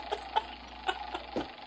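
A prize wheel is spun: a series of sharp, irregular clicks ticks over a steady background hum, with a slightly heavier clack near the end as the wheel's pointer catches pegs while it turns.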